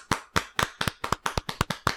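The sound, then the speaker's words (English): Hands clapping in a steady, even rhythm, about ten sharp claps over two seconds, each crisp and bright with a quick decay. No voices accompany the clapping. “And everybody clap your hands.”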